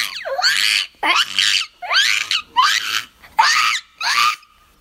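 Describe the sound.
A six-year-old child imitates a parrot with six shrill, raspy squawks, each rising sharply in pitch, coming in a steady rhythm with brief pauses between them and no other talking.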